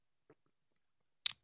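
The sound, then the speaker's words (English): Someone takes a drink of water: a faint soft tick, a pause, then one short, sharp, wet gulping burst with a crisp crackle. No talking. “And yeah, that was me taking a drink of water.”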